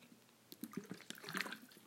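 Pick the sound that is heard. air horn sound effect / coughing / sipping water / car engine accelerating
sipping water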